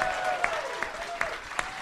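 At a comedy show, an audience applauds the first comedian coming on, steadily, a dense wash of many hands clapping at once, with a few sharper, louder claps popping out at a regular beat and faint cheering mixed in.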